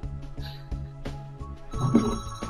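A telephone rings with an incoming call from a real estate agent, a repeating electronic tone, fairly loud, shifting to a brighter, denser burst of ringing near the end. No one speaks.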